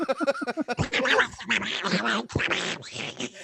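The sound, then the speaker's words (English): A loud sound effect played from a soundboard, meant as the Pac-Man death sound: a quick run of warbling, quack-like bleeps that gives way to a harsh, noisy sputter lasting a few seconds. “well, that obviously was a very poor rendition of the dead Pac-Man.”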